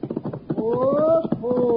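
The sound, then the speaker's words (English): The hooves of a ridden horse clip-clop loudly in a quick, steady rhythm as it comes down a street back from the post office, while a man's voice calls out in long drawn tones over the hoofbeats. “Hey, there he is now, riding back from the post office.”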